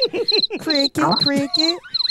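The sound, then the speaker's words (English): High, rapid cricket chirps repeat in short pulsing bursts throughout, fairly loud, while a voice talks over them almost continuously. “Cricket. Warning. Cricket.”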